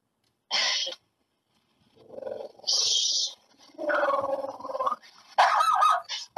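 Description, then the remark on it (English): A dog barks and growls in agitated bursts at a delivery person: a short sharp bark, then several longer, rougher ones, with brief pauses between them and no talking. “She sees a delivery person, so she's freaking out.”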